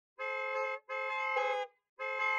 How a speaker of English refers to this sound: Jones stared at the phone display as the pickup truck backed away and he cut Mulvaney's call. The truck accelerated, beeping the horn.